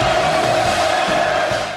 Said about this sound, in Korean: 양복을 입은 김정은 위원장이 박수를 받으며 만수대 의사당에 입장합니다.